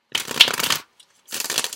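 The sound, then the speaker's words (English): Two quick bursts of tarot cards from the After Tarot deck being shuffled, a crisp papery riffle followed by a short pause and a second flurry. There is no talking. “Okay, so let's just get one more card from the After Tarot. It's kind of a fun deck, just for one final bit of guidance for you, Sag.”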